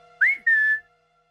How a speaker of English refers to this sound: going to his door, cracks it open, and whistles for Saskia's dogs